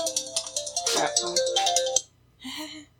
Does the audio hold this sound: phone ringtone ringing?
yes